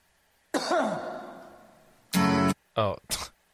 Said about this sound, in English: I didn't know there was a cough at the beginning. I didn't either.